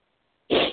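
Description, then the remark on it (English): A single sharp sneeze from allergies bursts out after a moment of near silence, loud and breathy, then trails off quickly. No one speaks. “That sniffles my allergies, eh?”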